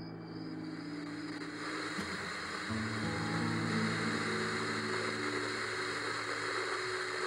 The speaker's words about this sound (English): Kent pulled out his phone and dialed the sheriff's number. What the hell? What? I'm only getting static, listen.